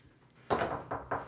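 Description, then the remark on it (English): Several quick knocks on a door after a short quiet moment, the first hit strongest and the rest following in a fast, slightly uneven rhythm, with no voices. “Wait, is someone at the door? Go get the door for a second.”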